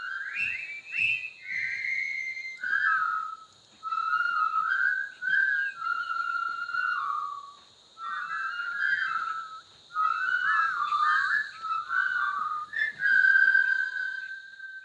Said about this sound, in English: There were certain things that I remembered, one of which I think everyone remembers is the whistling.